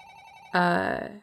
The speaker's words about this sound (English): You get an immediate call back from Cecil, and your communicator starts ringing.